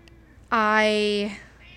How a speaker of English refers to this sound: Because the other day he kept meowing and meowing for touch, and I gave him bone broth to basically shut up.